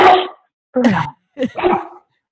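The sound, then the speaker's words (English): A dog barks in a short, loud series of about three or four sharp barks with brief pauses between them, and no one talking over them. “There's my dog.”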